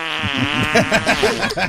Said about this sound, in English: And here's fart number one. And fart number two. I love these things. And fart number three.